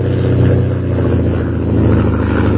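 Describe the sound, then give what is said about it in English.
A fast plane roars overhead as a man approaches his camp outside town, its engine a loud, steady droning rumble with a low pulsing buzz that carries unbroken through the whole moment, with no voices. “As Jim approaches his camp, a fast plane roars over his head.”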